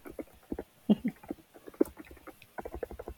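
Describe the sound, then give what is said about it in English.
Keyboard typing a message to Jamie: a quick, irregular run of soft plastic clicks and taps, with a brief pause near the middle before the keystrokes pick up again. No one speaks. “I'm just typing to Jamie for our listeners.”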